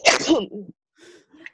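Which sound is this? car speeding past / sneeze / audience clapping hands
sneeze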